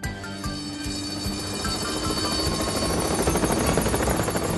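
vehicle, helicopter approaching

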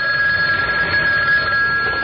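signal or alarm, telephone ringing

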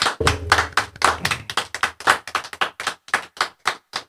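crowd, round of applause

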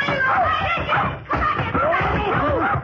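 animal, puppy barking

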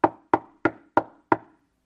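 household object, knock on a door

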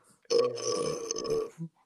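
human body sound, burp into a microphone

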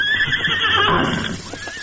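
animal, horse neighing

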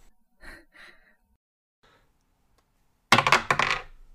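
dice being rolled

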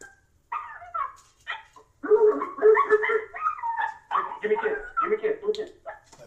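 animal, dog whimpering and barking

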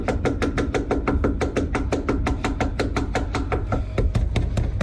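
household object, knocking on a door

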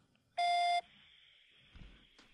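signal or alarm, voicemail answering machine beep

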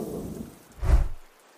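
nature, thunderstorm with rain

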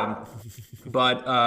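animal, dog barking

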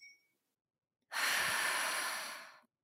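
human body sound, deep breath

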